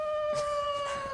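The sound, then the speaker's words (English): A person imitates a wolf howl: one steady, sustained vocal wail whose pitch sags slightly toward the end. It is fairly loud, with no talking. “You're an actual wolf woman.”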